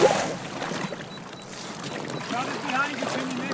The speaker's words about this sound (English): The water around us is dark and choppy. We are in the Deco Delta, a rigid inflatable boat designed to maintain buoyancy even when large quantities of water are washed aboard.